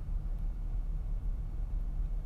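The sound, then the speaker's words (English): A truck drives right past, its deep engine drone steady and loud throughout the short stretch, with no one speaking. “And another truck just drove right past me.”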